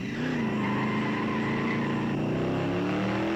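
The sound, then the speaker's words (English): A car engine hums steadily as the vehicle drives off, its tone shifting slightly over a few seconds; the motor stays fairly loud throughout, with no voices. “On their way to Chip Carmichael's house, another truck chased Buster Lee and Lars.”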